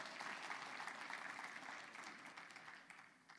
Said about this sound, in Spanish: Amén. Dele palmas a Él.